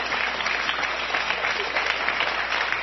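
A studio audience claps steadily, a dense, even wash of applause from many hands filling the whole stretch without pause, fairly loud.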